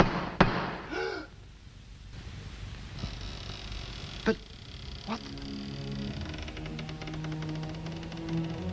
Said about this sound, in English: Now just look at that door. You feel that all that I would have to do is to raise my stick and knock, and it would sound like...